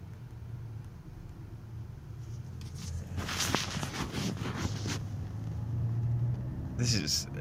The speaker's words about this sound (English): This is the worst I've ever seen the traffic here on entering the highway. Usually it's crawling. This is like a parking lot.